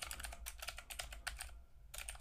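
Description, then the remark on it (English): Rapid clicky keystrokes on a mechanical computer keyboard, typed in quick bursts with a short pause, fairly quiet, with no one talking. “I know everybody loves my clicky clacky keyboard.”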